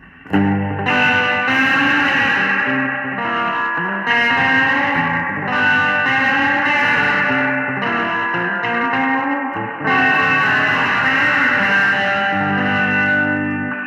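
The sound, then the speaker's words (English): An electric guitar, a Gibson Baldwin Signature Les Paul, played through a Zoom reverb effect, with loud, slightly gritty chords that ring and wash together in a steady progression for about fourteen seconds, no voices. “Let's do the Zoom.”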